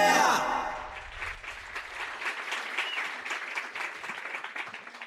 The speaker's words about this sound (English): Stop clapping, abruptly.